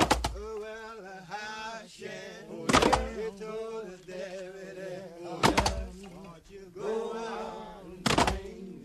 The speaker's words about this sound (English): Or you might remember the 2000 film, O Brother, Where Art Thou, which opened the soundtrack with the song Poe Lazarus, which is a recording of a group of Black men in prison chopping logs.